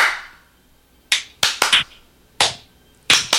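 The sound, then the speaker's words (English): Sharp hand claps in a kitchen, trying to turn on a toaster: about seven in irregular bursts of one to three, ringing out crisp with quiet gaps between and no voices. “Standing in the kitchen clapping at a toaster.”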